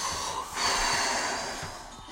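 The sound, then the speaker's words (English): A steady breath drawn in and then pushed out with no pause between, as part of a breathing exercise, a rushing airy hiss filling the whole stretch without any talking. “No pause between inhalation and exhalation.”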